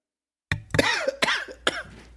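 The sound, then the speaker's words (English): A series of about four sharp coughs in quick succession after a brief silence, each a harsh burst trailing into a raspy, throaty rattle, with no talking. “You are the next one to start the pandemic game because you're coughing and sneezing.”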